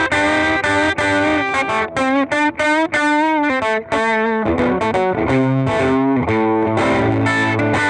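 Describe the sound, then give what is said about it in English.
A loud, heavily distorted electric guitar plays alone through a small 4-watt amp with a 7-inch speaker, boost and distortion added, mixing quick chopped chords with sustained, vibrato-laden lead notes that ring with thick, buzzing overtones throughout. “And you add a little, you know, boost and distortion, and you have pretty.”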